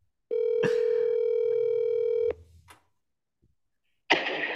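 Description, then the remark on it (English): A phone line rings on an outgoing call placed again to a man: one steady, buzzy ringback tone lasting about two seconds, followed by silence and then a sudden burst of rustling noise. “Just calling him again at random.”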